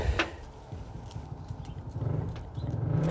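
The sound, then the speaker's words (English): A motorcycle engine revs with a low, throaty rumble that swells and grows louder toward the end, with no voices over it. “Yo, who's revving their motorcycle?”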